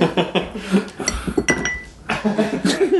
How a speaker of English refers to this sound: To the listeners, as I plunked the ice cube into the glass, my rum flopped out.